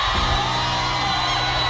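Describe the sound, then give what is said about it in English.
A loud crowd at the launch of the Instacash cannon at the Tiawa Mall cheers and whoops continuously, a dense wash of excited shouts and high yells with no pauses, sustained at steady volume throughout. “I was like, I haven't seen a crowd like this”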